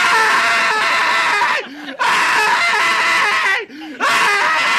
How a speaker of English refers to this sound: There you go. Keep screaming. Yeah! That was good stuff.